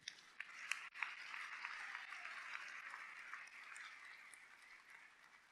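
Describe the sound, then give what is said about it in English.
An audience bursts into sustained applause for the Lord, dense overlapping claps forming a steady wash of sound with a few sharper individual claps at the start, fairly quiet overall and holding steady throughout. “Let's clap for the Lord.”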